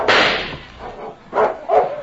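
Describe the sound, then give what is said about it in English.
A dog barks: one loud, harsh bark, then after a brief pause two shorter, sharper barks in quick succession. No voices are heard. “Get back there, you mutt.”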